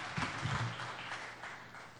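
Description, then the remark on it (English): A crowd of people clapping together for a woman who has just read a Bible passage, a steady, dense patter of many hands that carries on evenly throughout, moderately quiet, with no voices over it. “You want to clap for her, don't you? Go ahead.”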